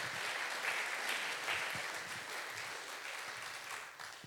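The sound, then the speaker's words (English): An audience claps steadily for volunteers who have just done press-ups, a dense, crackling wash of many hands that holds fairly loud throughout before easing slightly at the end, with no voices. “Give a round of applause to my volunteers.”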